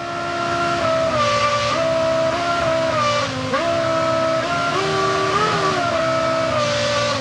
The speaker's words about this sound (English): So the engine would change RPM and hold it there, just like you would do with a musical note. Oh, that's a real engine. Yeah. That's not just the computer simulating it.